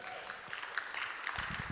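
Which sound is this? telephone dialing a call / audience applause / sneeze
audience applause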